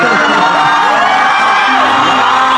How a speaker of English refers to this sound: Listen, the crowd's gonna go nuts.